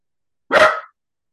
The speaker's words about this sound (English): I love it. I love it. I love dogs barking.